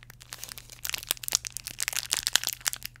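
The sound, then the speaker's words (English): Crinkling snack packaging being opened: a dense run of sharp, crackly plastic rustles that starts soft and grows busier and louder, with a faint steady hum underneath and no talking. “More packaging? Oh boy.”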